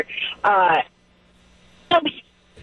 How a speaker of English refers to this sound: I'm sorry, we lost your cell phone there